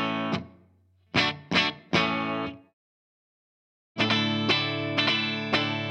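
Distorted chords from a standard RD electric guitar, borrowed from Thunder Road Guitars in Portland, ring out alone and loud: one fading strum, three quick punchy hits, a short silence, then a sustained, buzzing chord re-struck several times.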